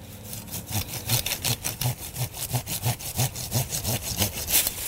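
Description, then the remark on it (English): A handsaw cuts through the stem of an invasive plant, which is being removed by the cut-stump method, in steady back-and-forth strokes, roughly two per second, each a rasping scrape with a low thump. No voices are heard. “Depending on the size of the stem, you can cut the plant using pruners, loppers, a handsaw, or a chainsaw.”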